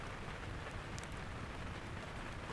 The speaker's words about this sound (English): it was safe to assume the storm was retreating